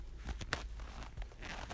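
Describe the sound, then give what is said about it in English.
A sock rubs against a phone, making quiet, scratchy fabric scuffs in short irregular strokes, with no one speaking. “Rub my sock a little bit against my phone, just to keep me humble.”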